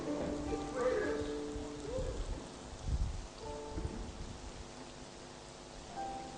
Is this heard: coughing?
no